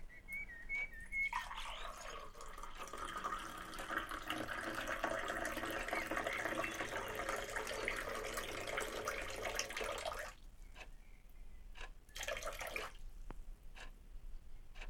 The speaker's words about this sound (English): Yes, right, I'll just fix you some tap water.